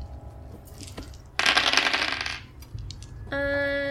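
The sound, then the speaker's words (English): Five dice clatter across a tabletop in one rattling burst lasting about a second, followed by quiet and then a bright sustained tone near the end. No one speaks. “3 successes and 1 exploding. Did Nick roll?”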